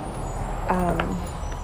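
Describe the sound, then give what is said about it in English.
A garbage truck rumbles low and steady, and partway through a brief, high squeal of air brakes cuts in over the engine noise before fading back into the drone. “hold on, that's the trash.”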